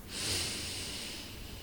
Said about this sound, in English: One, deep breathing. Or I should say regular meditative breathing. It doesn't have to be that deep. I like the 5-7-5 breath, where you breathe in for 5. We will practice now.